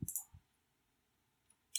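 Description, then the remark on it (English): A chair creaks and clicks in a few short bursts: a sharp crackle with a low thump, another soft thump, then a faint tick and a final brighter crackle, with near silence between. “You can hear that fucking chair, man.”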